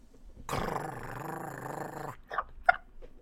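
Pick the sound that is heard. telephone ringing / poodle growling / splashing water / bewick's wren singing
poodle growling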